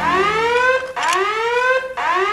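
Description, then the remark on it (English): A loud electronic alarm, Dot Matrix's virgin alarm, wails in rising, sweeping tones, repeating about twice a second with brief gaps between each sweep, continuous with no talking. “That was my virgin alarm. It's programmed to go off before you do.”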